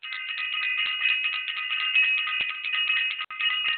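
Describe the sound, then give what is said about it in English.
A bright bell rings continuously for a few seconds, steady and fairly loud with a shimmering metallic tone, pausing for an instant just before the end. No one speaks. “I want to ring the bell”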